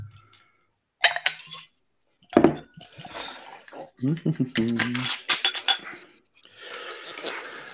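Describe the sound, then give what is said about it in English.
Bushmills single malt Irish whiskey, finished in Caribbean rum casks, pours into a glass in short splashing gurgles, broken up by several sharp clinks of glass and bottle against each other, with a brief stretch of steadier trickling near the end. “So we'll get this poured, and we'll get see what we think, what other people think.”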